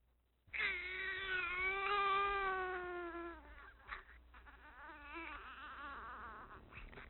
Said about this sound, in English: So what sounds made it onto the audio time capsule? We have a baby crying.